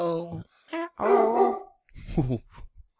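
A dog named Angus barks and yowls in several loud bursts, some drawn out and tonal, others short, with brief pauses between them.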